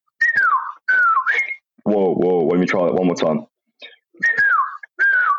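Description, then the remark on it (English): A person whistles an imitation of an African emerald cuckoo call: three clear, sliding phrases, then a brief spoken remark, then two more whistled phrases. “going to whistle the call of the African emerald cuckoo”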